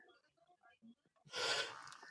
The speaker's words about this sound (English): Oh, stop it. No yawning allowed.